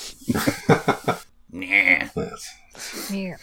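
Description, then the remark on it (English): A cat whines, letting out a couple of drawn-out, plaintive meows with rising and falling pitch, following a brief stretch of someone talking. “Wow, your cat is even more whiny than mine.”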